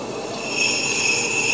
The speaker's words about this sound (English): We need some sleigh bells.